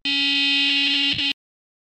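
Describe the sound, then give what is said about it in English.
A loud, harsh electronic emergency alert tone, a false missile-threat alarm sent in error to phones in Hawaii, blares steadily for just over a second, buzzy and rich in overtones, then cuts off abruptly into silence. “Did you guys get an alert of an incoming?”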